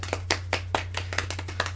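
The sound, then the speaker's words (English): A short burst of soft, quiet clapping, several sharp hand claps in a loose rhythm over a faint steady hum, sounding like a small group applauding politely for NASA for under two seconds. “Let's give a small, appropriate round of quiet applause for NASA.”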